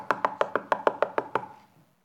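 Nine quick, evenly spaced knocks rap on a door in a steady rhythm, fairly loud with a hollow woody ring, then stop and silence follows.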